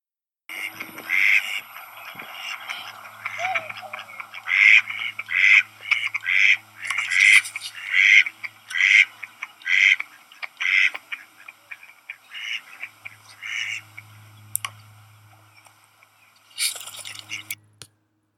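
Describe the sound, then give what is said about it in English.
A tiny bird resting on the truss of Fair Oaks Bridge calls over and over in a steady run of short, raspy notes, then the calls thin out into scattered bursts over a faint low background rumble. “I listen to the sound of the tiny bird, doo-doo, doo-doo, as it rests on the truss of Fair Oaks Bridge.”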